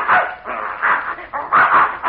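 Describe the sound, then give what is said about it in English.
A dog called Adolf, chased by a bear, barks several times in quick succession, sharp and loud, with a slightly yappy, strained edge and no voices in the background. “Well, I'll be darned, there's that mad dog Adolf.”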